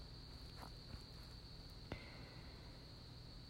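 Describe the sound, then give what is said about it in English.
Crickets chirp steadily outdoors at night, a continuous high-pitched trill with a quieter second tone joining partway through, plus a couple of faint soft clicks. No one speaks. “That's what crickets are for me.”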